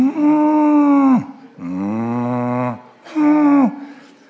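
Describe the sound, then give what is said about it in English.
A person imitates a cow crying with three long, drawn-out mooing wails, each sliding down in pitch at the end, loud with short pauses between. “Have you ever heard a cow cry?”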